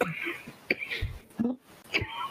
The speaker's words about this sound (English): One of the issues, just a second, I don't have the corona, but I do have a cough.